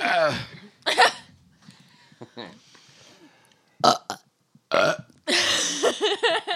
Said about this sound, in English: This is a cacophony of gas right now. I farted and everybody starts burping.